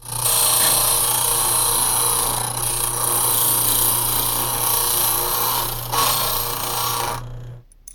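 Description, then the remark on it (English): A key cutting machine making new copies of a key, two keys in all. It runs steadily, its motor humming under a loud, harsh metallic grinding and rasping for about seven seconds before it shuts off abruptly. No one speaks. “Okay, well, I can either take the lock off or make you a new key copy.”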